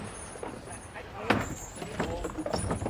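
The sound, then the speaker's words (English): A horse-drawn wagon rumbles and its hooves clop to a stop outside an inn, the horses steaming in the cold after a hard journey from the coast, with a sharp wooden knock midway and faint voices murmuring underneath. “The wheels that stop outside Jamaica Inn.”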